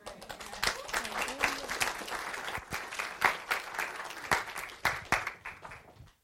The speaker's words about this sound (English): One more time, can we give a big round of applause to the student ministry for taking over service today? You guys did a great job. Really appreciate it.